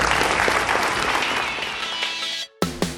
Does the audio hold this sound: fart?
no